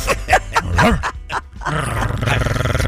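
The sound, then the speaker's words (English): A person on the Bob and Tom Show imitates a growling dog: a few short, gruff snarling bursts, then a longer, rough, rumbling growl that holds steady and loud to the end. “That's how we make our living. Making dog noises.”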